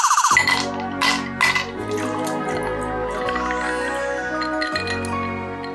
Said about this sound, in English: Should I get the tonic screwdriver out and open the bottle? I think we should.